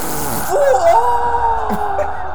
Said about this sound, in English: That's not coming out of their mouths. That's coming out of their ass! The farting ghost!